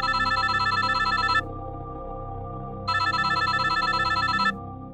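telephone bell ringing

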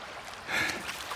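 water lapping

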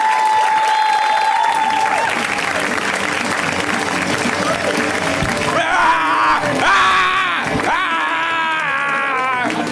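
audience applause and cheering

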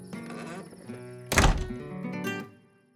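door shutting

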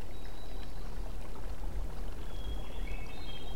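river water flowing

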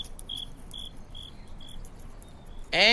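cricket chirping

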